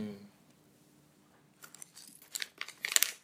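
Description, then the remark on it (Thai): Another plastic snack packet is crinkled and torn open on a food programme, a run of sharp, bright rustles and crackles that grows louder toward the end after a brief low hum at the start. “นี่คือเสียงอีกซองนะฮะ”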